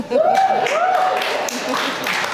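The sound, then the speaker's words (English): An audience applauds steadily at a constant loud level, with clapping mixed with a few rising and falling whoops and cheering voices throughout, after a recitation of insults from Shakespeare. “Well, in contradiction to the applause, the point I'm trying to make is Shakespeare was very good.”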